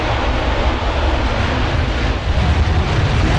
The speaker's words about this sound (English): Another jet going by here.